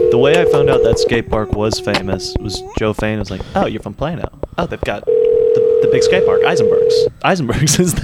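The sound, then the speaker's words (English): An outgoing call's ringback tone buzzes steadily, once for about a second and again for two seconds a few moments later, while people keep chatting over and between the rings. “Here we go. We're ringing.”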